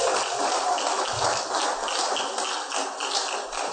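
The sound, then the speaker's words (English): Sustained audience applause as people take their seats, a dense, steady wash of many hands clapping that holds at an even loudness for the whole stretch, with no voices standing out. “Let's give them a round of applause as they take their seats.”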